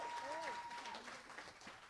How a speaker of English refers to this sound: Give all of our actors today a big round of applause.